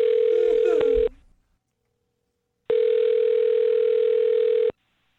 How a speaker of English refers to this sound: Well, I'm going to dial her phone number and get her on the phone and find out why she's not calling you back.